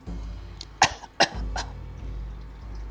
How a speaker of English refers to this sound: Made a lot of people cough.